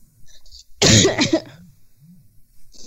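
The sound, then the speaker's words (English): A loud cough bursts out with a harsh, raspy throat-clearing quality, followed by a couple of softer low throat sounds and a faint hiss, then quiet. “Sorry for my intermittent coughing.”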